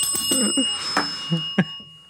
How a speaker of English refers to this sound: Did you ring the bell properly?